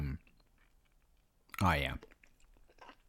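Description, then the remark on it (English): Moist chewing of a sandwich made with good, soft bread that turns to a gooey paste, with soft clicking mouth noises throughout and a short, louder voiced murmur about halfway through. “I was a little late getting started because I still got, you get, really good bread, turns to, like gooey paste, and it gets in your teeth and stuff. And it's basically, you're gonna be chewing that for a while.”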